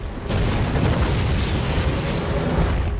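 A loud, sustained explosion bursts in after a brief lead-in and keeps roaring with deep, rumbling low end and crackling noise for several seconds, heard on its own with no voices.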